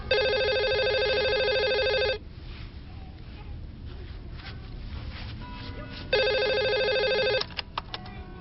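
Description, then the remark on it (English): A telephone rings twice, left unanswered for the answering machine, each ring a loud, rapid trilling bell burst separated by a few seconds of low hiss. The second ring is cut short as the machine picks up, followed by a few faint clicks. “Well, he lets the machine get it.”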